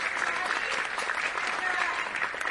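Steady audience applause fills the whole stretch, a dense, even patter of many hands clapping at moderate loudness with no pauses and no one speaking over it.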